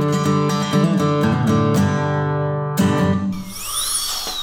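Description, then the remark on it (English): A dentist's drill whirs steadily in a loud, buzzing, harmonic-rich drone, then shifts into a thin high-pitched whine that swoops up and down. No voices. “And now, a news update from the dental chair.”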